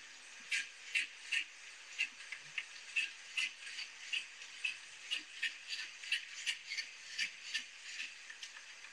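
A bear huffing in a steady series of sharp, breathy bursts, about two per second, harsh and hissy over a constant layer of static, with no one talking.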